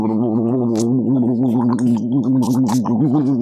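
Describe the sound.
A voice mimics a race car engine to describe how a car felt to drive, with a loud, sustained, low buzzing drone that wavers and revs unevenly for about three seconds, with no other talk.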